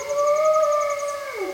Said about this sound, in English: The calls of a large pack of timber wolves and their pups echo through a pine forest. Timber wolves are a subspecies of the gray wolf. They're large wolves that live in packs of up to 20 individuals.